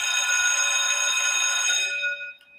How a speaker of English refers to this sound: Oh, that's the bell. Gotta go.